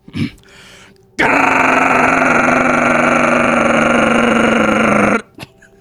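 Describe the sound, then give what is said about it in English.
A voice imitates a semi-truck's jake brake with a loud, sustained buzzing rattle lasting about four seconds, steady and harsh, then cutting off abruptly. “That's just a big rig Jake breaking.”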